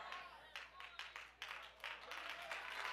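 Scattered hand claps from an audience, a loose, uneven patter of sharp bright claps repeating every half second or so, fairly quiet and sparse rather than full applause.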